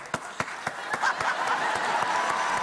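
Sharp, evenly spaced handclaps start off in a steady rhythm, then a dense wash of audience applause swells in underneath and keeps going loudly to the end.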